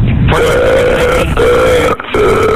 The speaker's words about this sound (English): And so he would call 911 and they would say, hi, 911. And then he would just start burping.